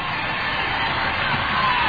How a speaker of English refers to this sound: Mules giving them something to cheer about.